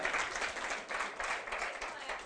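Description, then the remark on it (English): A crowd claps steadily for a couple of seconds, a dense, continuous patter of many hands with a slight pulsing swell, fairly loud throughout. “Let's clap again, brother.”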